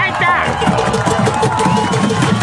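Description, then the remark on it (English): A large crowd roars in a dense, steady wash of overlapping voices and cheers, loud and continuous throughout, with no single voice standing out. “Big crowd, though.”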